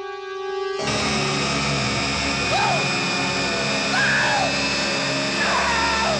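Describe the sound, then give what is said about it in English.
A man in a horror movie screams in terror on finding a severed head, his raw, wavering cries rising and breaking several times over a loud, roaring wall of background noise that sets in abruptly. “So we get a very rare horror movie male scream queen here. True. Yeah. He does scream. And a very good scream at that.”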